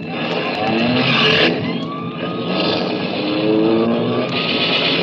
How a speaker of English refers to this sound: a prowl car.